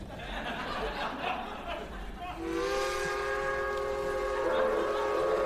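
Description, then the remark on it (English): A westerly train rumbles steadily as a long, sustained whistle or horn sounds from about halfway through, its layered harmonic tones holding over the rolling rail noise. “Is that a westerly train I hear? The rough lullaby of the rail.”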